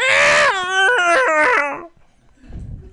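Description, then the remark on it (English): A voice imitates a cat's distressed yowl: one loud, strained, wavering wail that steps down in pitch over about two seconds, then gives way to faint rustling. “That was me cleaning the microwave with my grandfather's cat.”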